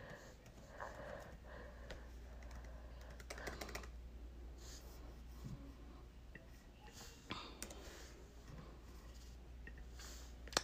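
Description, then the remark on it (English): Light, irregular tapping of laptop keys typed with one hand while the other holds a phone, a slow, steady patter of keystrokes with brief pauses, soft, alongside faint breathing and sniffing over a low background hum. “I know I'm typing a little slow, family, because I'm holding my phone one hand, and then I'm typing on my laptop with the other.”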